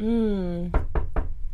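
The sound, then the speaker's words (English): Three firm, evenly spaced, sharp knocks on a door, following a brief sustained humming tone that fades out just before the first knock. “Who knocking in the door post-apocalypse?”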